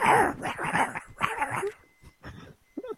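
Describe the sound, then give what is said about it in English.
A person imitates a dog, loud gruff barks and growls in a rapid run of bursts, tapering into a few quieter, breathy yips toward the end. “That's a pretty good dog sound.”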